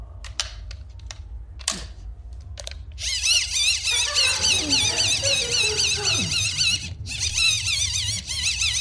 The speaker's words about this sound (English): I just want to make it clear to the listeners at home: it's a wind-up torch. I'm not strangling a kitten. It does sound a little bit like I'm.